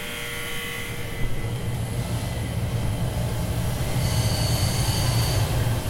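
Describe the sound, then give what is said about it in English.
Busy jewelry workshop ambience at the David Webb Workshop above its retail space on Madison Avenue, Upper East Side, with gemstones and tools in use: a steady, loud wash of machine hum and low rumble, with thin high whines from motors or tools rising and fading, and no voices. “It's a loud and busy place, as you can hear.”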